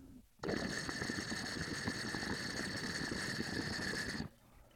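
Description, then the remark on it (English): A steady, loud rush of air whooshing through a size-10 glass pipe joint with no nail fitted, with a hissing, whistling edge like a small jet engine. It starts and stops abruptly and lasts about four seconds. “It's gonna sound like a little jet engine.”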